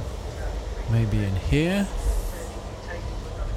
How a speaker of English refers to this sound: Now I'm in the vestibule and it's kind of a lose-lose situation. Either I'm sitting right next to a television set or I'm in the vestibule and it's like crazy, crazy train noise.